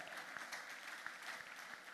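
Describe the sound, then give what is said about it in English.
A church audience applauds a healing testimony steadily, dense overlapping claps forming a continuous bright wash with a few sharper individual claps popping out, no voices heard. “You are not clapping like you love to see me still standing here.”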